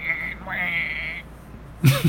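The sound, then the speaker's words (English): A person's voice imitates a woodpecker call: two drawn-out, high, nasal squealing tones, the second swooping up into a steady held note, followed by a short burst of voiced sound at the end. “that's a perfect impression. Perfect. Spot on.”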